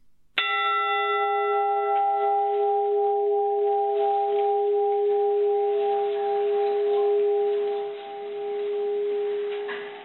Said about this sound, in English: So that is actually a recording of the bell of the Edmund Fitzgerald once it was resurfaced.